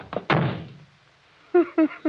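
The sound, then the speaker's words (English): A door slams shut once, loud, with a quick rattle just before the heavy bang and a short fading reverberation. After a pause, a voice begins speaking. “You shouldn't have slammed the door, Crane.”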